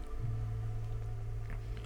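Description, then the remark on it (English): A washing machine runs with a steady, low motor hum and a faint mechanical rumble, continuous, with no voices. “It is a washing machine.”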